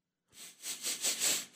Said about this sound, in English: I'm smelling the sleep sack. It, darn if it doesn't smell like cat urine.